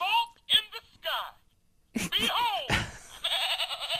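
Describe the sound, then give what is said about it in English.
A recorded donkey bray plays from a toy sound book, coming in harsh, wavering bursts with a brief pause in the middle, mixed with a few soft thumps and clicks. “There's the donkey.”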